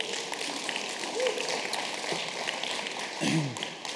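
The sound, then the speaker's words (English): A church audience claps for the word of God, a dense, steady wash of many hands applauding together at moderate loudness throughout, with faint voices and brief vocal sounds mixed in the background. “Come on, why don't you clap your hands for the word of God.”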